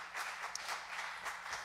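A crowd applauds to welcome everybody watching online, many hands clapping in a dense, steady patter of bright, crisp slaps at moderate loudness, with no voices rising above it.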